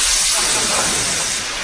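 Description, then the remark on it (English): A steady, loud rush of hissing steam from an espresso machine making an espresso, bright and breathy, holding constant for under two seconds and fading only slightly at the end, with no voices over it. “Perry, pop an espresso in the perming engine for Burnley.”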